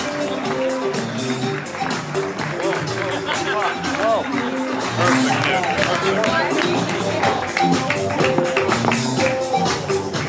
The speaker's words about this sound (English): Give me a round of applause. Give me a round of applause.